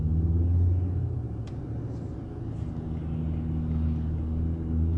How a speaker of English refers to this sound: It's a little fucking shitty car. It's a little fucking beater. Little fucking peckerhead car with no muffler on it on purpose.